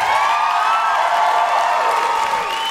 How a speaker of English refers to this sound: And can I have a huge, huge, huge round of applause for the wonderful Elaine.